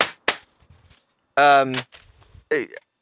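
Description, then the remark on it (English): Two sharp knocks of a video game box banged on a desk as a prop, in quick succession, followed by short bursts of voice. “But you can bang it on the desk and we'll know it's there.”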